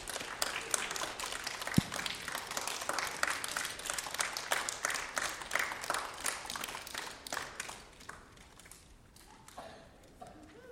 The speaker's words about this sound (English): Give these students a round of applause.